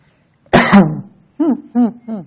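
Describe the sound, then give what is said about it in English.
A harsh, forceful throat clearing with a rough cough, followed by three short, voiced grunting clears in quick succession, with no talking. “Well, I got to get rid of the junk.”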